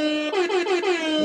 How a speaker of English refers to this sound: Thank you to all thank of you. Thank you. Hip-hop air horns to all of you.